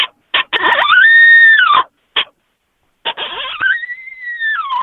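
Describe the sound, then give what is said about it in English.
An aggressive owl challenge call: short, sharp barking notes lead into a loud, raspy, high-pitched screech, then a second burst of barks and another long, wavering screech, with no talking. “But if you get a challenge owl, which is, you can tell, if you just listen, it sounds aggressive, and it's real sharp and short, and there's a lot more barking in it.”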